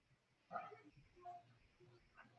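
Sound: dog barking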